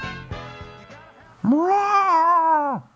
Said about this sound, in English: Why does our manatee sound like a lot like a cat? I don't know what's a manatee supposed to sound like? I don't know. He's a sea cow.